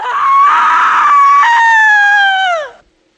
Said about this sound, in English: Now that's a scream!